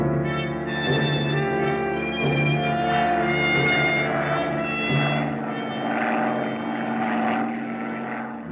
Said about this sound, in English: And you're still thinking of that the following morning as the supply plane taking you and Mike to Blue Lake lets down over the flat grassy meadow. Gartland, the pilot, skillfully guides it through an avenue of tall hemlock and spruce.